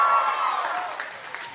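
A crowd at a live show in New York applauds and cheers, with a steady wash of clapping and some high whistle-like tones, loudest at the start and tapering off slightly over a second and a half.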